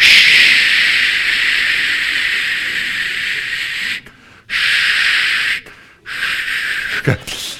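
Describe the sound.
An aerosol spray can hisses in three bursts: one long, steady spray of about four seconds, then two shorter sprays after brief pauses. The hiss is loud and bright.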